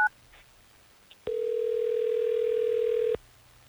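A brief pair of beeps, then a steady, loud telephone tone holds for about two seconds before cutting off abruptly, with no voices present. A call is being placed on air by the Tampa Bay radio station Hot 101.5.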